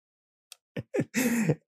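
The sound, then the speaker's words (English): A voice acts out a dramatic gasp as Belle's reaction in a retold movie plot: a faint click, two quick sharp intakes of breath, then a longer drawn-out voiced gasp, fairly loud, with no other sound around it. “And Belle is like, gasp.”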